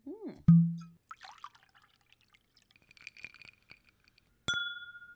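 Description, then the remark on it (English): Soft liquid sounds and small clicks of sipping, then a sharp glass clink near the end that rings out with a clear, high, sustained tone. “So we'll keep sipping on this”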